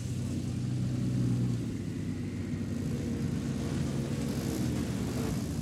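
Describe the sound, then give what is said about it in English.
The engine of a modern-day Ferrari 488 Challenge Le Mans race car roars at a steady, loud pitch, with a faint high turbo whistle rising briefly above the deep rumble. No one speaks. “Hear the turbos whistling.”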